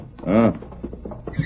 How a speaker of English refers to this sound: Did you hear that horse, Kima?